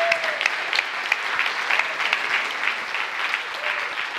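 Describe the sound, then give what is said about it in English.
Steady applause from an audience for the children and helpers, dense overlapping claps holding at an even, fairly loud level throughout without pause or voices breaking through. “And while we're in the mood for clapping, to the band who are now sitting over here.”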